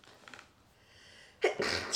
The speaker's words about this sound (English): Bless you.